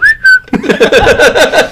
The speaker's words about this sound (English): Get a whistle in there